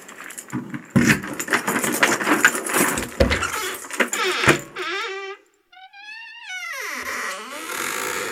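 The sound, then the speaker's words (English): Keys jangle and clatter loudly for several seconds, then give way to a drawn-out, high-pitched squeaky creak that rises and falls, like a gate or door swinging open. “So, get your keys.”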